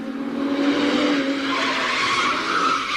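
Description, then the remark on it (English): A voice imitates a car pulling up, a loud, steady engine whine with a screeching, skidding edge that fills about three seconds. No other talking is heard. “Just for that, I shall do an impersonation of a car approaching.”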